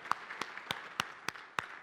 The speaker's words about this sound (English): Y'all, I know Will isn't here, but give him another round of applause because I know he's watching. Good job, Will.